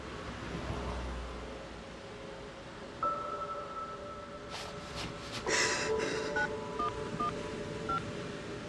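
A phone dial tone hums steadily, then several short keypad beeps sound in quick succession as the emergency number 911 is dialed on a phone, clear over faint background noise.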